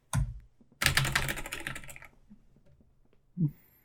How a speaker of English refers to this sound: Wow, I like your improv typing. That sounds nothing like a typewriter.